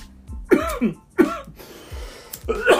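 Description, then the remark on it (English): A man coughs hard after taking a hit of smoke, three rough, raspy bursts spaced apart, with strained breaths between them. “That's that approval, huh? That that's the second approval. When I cough.”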